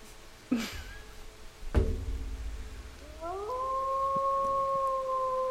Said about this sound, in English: That's a wolf.